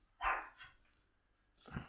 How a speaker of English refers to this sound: Next door's dog.